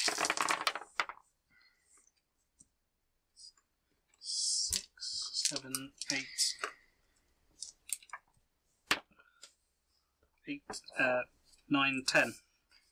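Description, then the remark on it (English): Dice are rolled in a game, clattering across a hard surface in a quick series of sharp clicks and rattles, with a voice murmuring briefly between the bursts of noise. “So it's one dice time.”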